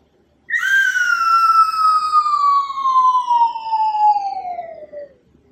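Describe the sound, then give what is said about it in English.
A cartoon falling-object whistle, as in older cartoons like Looney Tunes and Wile E. Coyote and in SpongeBob SquarePants or Mickey Mouse Clubhouse, marking something falling: one long, loud tone sliding steadily downward in pitch for about five seconds, with bright harmonics, fading out at the end with no voices. “That's it. Something falling. Normally it was an anvil or a safe with that A-C-M-E, but most of the time it was a coyote.”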